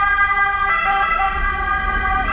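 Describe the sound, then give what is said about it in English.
An Italian ambulance siren in Bologna, Italy, wails steadily with strong, sustained tones, shifting pitch partway through, heard over a low rumble of road traffic with no voices. “It's always interesting the different ambulance ringing in countries.”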